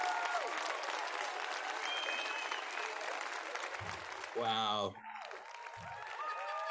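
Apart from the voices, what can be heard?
audience applause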